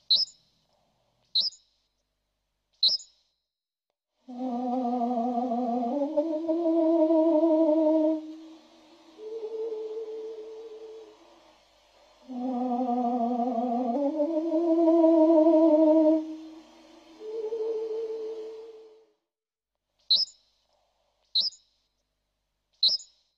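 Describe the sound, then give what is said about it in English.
Three quick, high bird chirps, then a drawn-out, much lower slowed-down version of the song warbling twice with rich tones, and the three bright chirps again at the end. “But that, at the core, birds are really singing.”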